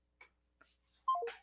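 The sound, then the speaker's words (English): Two soft clicks, then a quick run of three or four electronic phone tones stepping downward in pitch, loud, as someone redials a dropped phone call, with no one talking. “I think we lost them. Hold on. Get them back on the phone.”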